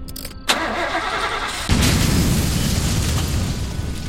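A sharp burst is followed moments later by a heavy, deep explosion that gives way to a sustained roaring rumble, loud, as the gas tank of a Ford Econoline van blows up on a hot, steamy night.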